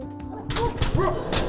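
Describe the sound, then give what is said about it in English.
A dog barks at the door as a candidate knocks on doors campaigning in Kansas, in a quick run of three or four sharp barks, with a few higher yips mixed in, over faint background noise. “So dogs are always happy to see me.”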